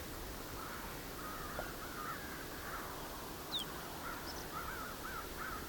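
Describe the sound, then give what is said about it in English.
A flock of about 70 crows caws repeatedly nearby, many overlapping calls strung across a steady outdoor hiss, with a brief higher bird chirp partway through and no one talking. “There's a flock of, I don't know, 70 or so crows nearby here too.”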